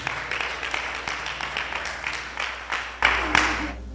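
An audience claps together in a steady, dense patter of many hands, swelling noticeably louder near the end. No one speaks over it.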